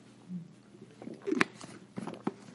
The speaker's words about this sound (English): Now, that's a lot to take in, so I'll just pause a little bit. I'll take a sip of water